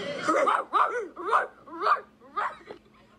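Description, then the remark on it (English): A woman imitates a dog barking, giving five or six throaty, yappy barks in a steady rhythm, with no talking in between. “last week gave us the singular bark. So she is stepping it up.”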